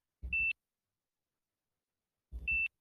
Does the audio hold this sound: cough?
no